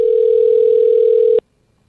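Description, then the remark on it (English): A phone ringback tone on an outgoing call: one steady, loud electronic hum lasting over a second, then cutting off into silence while the call waits to be answered. “Now, you never know if someone's going to answer their phone when you do this.”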